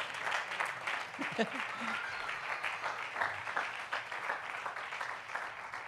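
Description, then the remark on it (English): A crowd claps hands steadily for several seconds during a sermon, a dense, continuous patter of many hands, with a faint voice briefly rising beneath it. “Clap your hands, whether you agree or not.”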